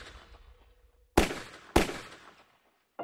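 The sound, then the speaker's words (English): Two loud, sharp gunshots ring out in the middle of the night about half a second apart, each trailing off in a reverberant echo, with another blast starting just as the sound cuts off. No one speaks. “But this whole sordid tale began 7 years ago with gunshots in the middle of the night and a 911 call from a terrified-sounding 16-year-old.”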